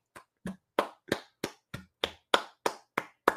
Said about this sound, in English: I'm giving you a round of applause, my man.